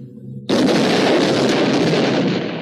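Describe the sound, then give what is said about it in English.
A low humming tone is abruptly cut off by a loud cartoon explosion of ice cream bars handed out to Japanese people, which keeps roaring and crackling as a dense, sustained blast rumble for the next two seconds. “So that was exploding ice cream bars that were being handed out to unsuspecting Japanese.”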